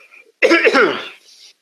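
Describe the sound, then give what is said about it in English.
A single harsh, throaty cough erupts loudly and close up, trailing off into a raspy exhale, preceded by a faint breath. “My cough is probably my karma.”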